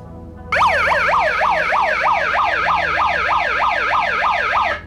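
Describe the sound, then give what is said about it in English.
A loud electronic alarm siren from the built-in alarm button of a megaphone, wailing in rapid repeated up-and-down sweeps, about two per second, starting abruptly and continuing steadily with no talking. “And, you know, what's kind of cool is this particular megaphone has some pretty interesting features, like this one right here. This is like a little alarm button that it has.”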